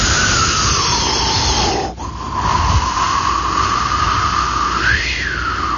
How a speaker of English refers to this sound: He would look long and hard, see, with his eyes in a narrow, kind of a narrow way... Looking out, and the wind would be howling past the window.